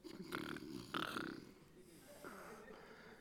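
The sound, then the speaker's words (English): A man's voice mimics loud snoring: two harsh, rattling snorts in quick succession, followed by a quieter, drawn-out wheezy exhale. “he's went to sleep up there in heaven on you guys. And he's snoring so loud, y'all may have to get really loud yourself.”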